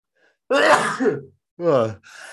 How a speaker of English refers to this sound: Hold on one second. Oh, I'm gonna sneeze.